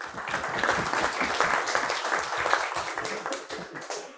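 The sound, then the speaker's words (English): A crowd breaks into steady applause, many hands clapping together in a dense, crackling wash that stays loud and even for a few seconds. “Raboisai, round of applause.”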